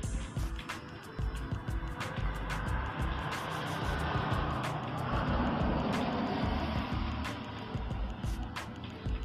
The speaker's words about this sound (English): Traffic. This is, we over here on the main street. There's always gonna be cars coming through here.